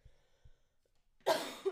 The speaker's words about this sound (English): Oof. Sorry. COVID cough.